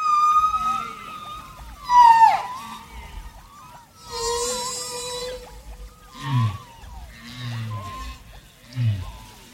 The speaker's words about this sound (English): The UN greetings on this track are mixed with another sound, humpback whale songs. And by the track's end, the whale songs are the only sounds left.